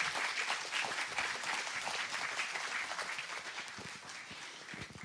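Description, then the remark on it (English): An audience applauds three panelists steadily, a dense wash of many hands clapping at once that holds fairly even throughout and eases slightly toward the end. “Can you give a round of applause to these three awesome people?”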